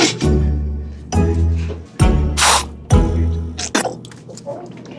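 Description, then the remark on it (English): A short, sharp hiss of a specific kind of scented aerosol spray bursts out near the middle, set against deep, rumbling vocal sounds that come in several long stretches. “She has to spray that one specific kind.”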